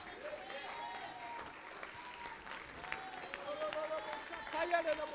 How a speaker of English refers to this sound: Come on, can we clap our hands to Jesus just for a minute?